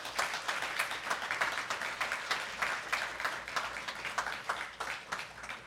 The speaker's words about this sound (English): So could you please give them a round of applause?